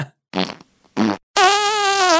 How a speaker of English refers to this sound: Let's play some fart sounds to make it all better.